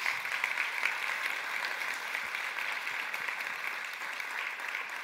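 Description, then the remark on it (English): A church audience on a Sunday morning claps steadily for a missionary couple, a dense, even wash of many hands sustained throughout without pause, loud and unbroken, with no voices standing out above it. “Can we clap for them?”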